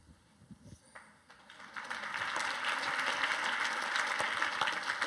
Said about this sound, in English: Make her sit down. It's finished, she's clapping.